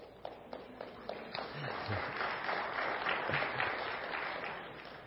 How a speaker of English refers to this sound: That said, I know we have also excellent children in our church. This is where you parents get to applaud for your children.